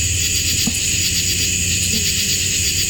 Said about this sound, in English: It kind of sounds to me like it's bug wings.